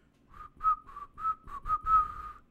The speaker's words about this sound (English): I sat, and we waited. At exactly 3:03, we heard the whistling.